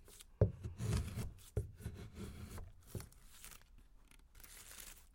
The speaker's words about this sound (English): Mm. Yeah, you can hear the sound. That's me rubbing my thumb against the curls of wood coming up.